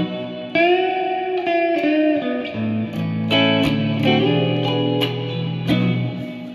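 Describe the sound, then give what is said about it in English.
A sustained, distorted instrument plays chords and notes with a plate reverb applied, giving a smooth, shimmering wash that lets each note ring out and blend into the next; no voices. “Plate.”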